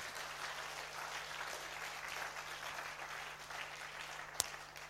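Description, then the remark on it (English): An audience clapping hands in praise to the Lord Jesus, a steady dense wash of many overlapping claps with a constant low hum underneath and one sharp louder snap near the end. “Just clap your hands to the Lord Jesus.”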